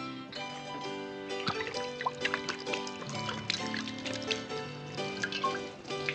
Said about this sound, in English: I'm gonna pour me three fingers this here tonsil varnish.